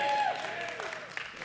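Soft, scattered applause from a church audience during a sermon, a brief patter of light claps with no strong rhythm, fairly quiet and thin, like a restrained golf clap.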